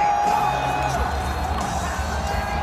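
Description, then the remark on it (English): A large crowd cheers and roars wildly as Trump enters the building, in a dense, unbroken wall of noise, with whoops and shrill tones cutting through and the loudness holding steady for the whole stretch. “Crowd going absolutely insane.”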